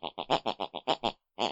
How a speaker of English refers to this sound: Each week we press our ear against the bedroom wall, whatever my mother listens to before she goes to bed, picks and pulls on her unconscious mind, and it's the very tune that she snores. Let's have a listen tonight.